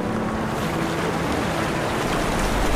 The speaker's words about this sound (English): So right now, I'm sitting in front of the Bao Gong Lake. 我面前就是 Bao Gong Hu. It's a little bit windy today, and the water moves very fast, and it's very beautiful.